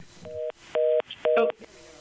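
A telephone dial tone in the background of a call beeps in three evenly spaced pulses, each a steady two-note hum about a quarter second long, clear and fairly loud with faint noise between them.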